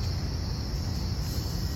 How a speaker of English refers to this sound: Lots of crickets, sprinklers.